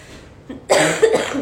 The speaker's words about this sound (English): The cough's getting better. Okay. Like, you've had this cough since the summer.